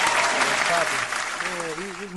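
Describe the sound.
Steady audience applause for a music artist who is in the building, filling the whole stretch, a dense rush of many hands clapping at once, with a few voices calling out over it near the end.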